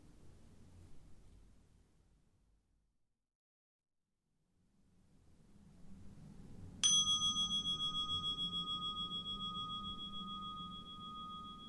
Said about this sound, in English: We will now begin the meditation. You will hear the sound of the bell to mark the beginning and conclusion of the meditation.